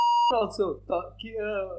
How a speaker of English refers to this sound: I'll beep it out.